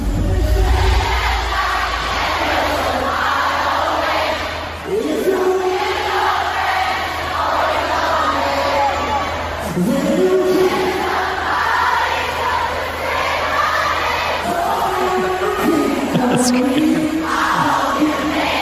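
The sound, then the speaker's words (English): A large concert crowd sings along loudly in unison to a band's song at their show, a dense roar of voices swelling through rising and falling melodic phrases, continuous and strong for the whole stretch. “So you put it out, And it's not like it's getting played all over the radio, but you play it at the show, and this is what happens.”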